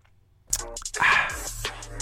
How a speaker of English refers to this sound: Before I actually go, I got this glass of water here that I need to take a sip of.